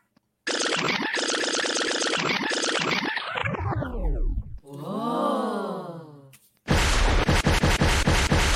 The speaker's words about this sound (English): lightning bolts, love it.